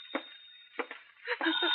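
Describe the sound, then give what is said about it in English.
A telephone rings in short repeated bursts, thin and muffled as if from an old recording, with voices briefly overlapping near the end. “Better answer that phone”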